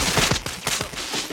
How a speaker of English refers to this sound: Fireworks.